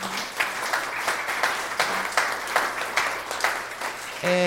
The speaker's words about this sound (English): first I want to give a big thank you and hear a warm round of applause for Mary Kay Magistad and for Gadi Epstein.